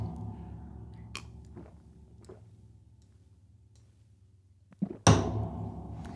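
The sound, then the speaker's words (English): A glass of lukewarm Keystone Light beer taps sharply on a bar, followed by about four seconds of low, steady gulping as it is chugged against a clock. A second knock marks the glass going down, and a loud burst of noise follows. “I'm going to tap the beer on the bar, chug.”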